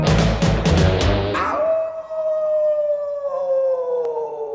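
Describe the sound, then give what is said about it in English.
A person howling like a werewolf lets out a long, loud wolf-like howl that holds steady and slowly sinks in pitch for several seconds, preceded by a quick series of sharp, punchy bursts. “Teen Wolf gonna howl today.”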